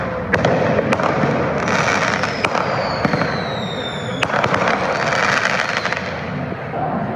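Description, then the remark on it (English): Mortar fireworks, set off at random in and around a crowd in front of the Justice Center at around 9:30 p.m., crackle and bang continuously, with sharp pops and whistling rising streaks over a dense, rumbling background of blasts and crowd noise. “People were setting off fireworks, mostly mortars, at random in and around the crowd.”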